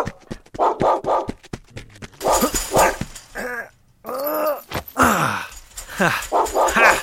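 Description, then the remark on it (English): A puppy barks in a rapid string of short yaps, then breaks into high, wavering whimpers and whines, with a few more sharp barks toward the end. “Oh, good puppy. Come on. It's okay.”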